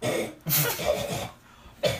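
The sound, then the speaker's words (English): A voice imitates harsh, hacking coughs made while trying to dislodge a Jolly Rancher hard candy: three rough bursts in a row with short raspy gaps between them, loud. “I was like coughing over and over again to get this fucking Jolly Rancher like launch itself out back into the container of my mouth.”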